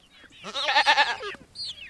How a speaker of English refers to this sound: When you pull up to JJ Crapel's home in Empire, Louisiana, you're welcomed by a chorus of goats, ducks, and chickens.